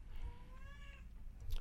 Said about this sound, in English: The cats. These cats. I wonder if that's picking up on the mic. I know. I hope not. I kind of hope so. I think that would be a good aesthetic. This is the ambiance of my apartment, guys.